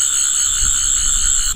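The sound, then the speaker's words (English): The Doctor's sonic screwdriver, switched on with a button press in the Pharaoh's palace, whistles loudly in a steady, piercing electronic tone with layered harmonics, holding for about a second and a half before cutting off abruptly. “The Doctor pulled a device from his pocket, pressed a button, and it began to whistle very loudly.”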